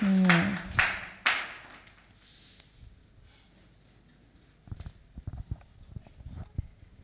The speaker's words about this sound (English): So let's welcome them with a clap offering. You don't look excited. Please be excited.